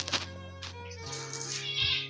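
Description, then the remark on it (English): A cat lets out a drawn-out, wavering meow lasting a couple of seconds, moderately loud, with no one talking over it. “pick out the cat.”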